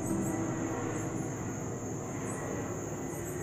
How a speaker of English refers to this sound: Okay, guys, I prayed against too many car noises, but I forgot to pray against the airplanes, you know. I said, God, please not loud cars. And one just passed along with an airplane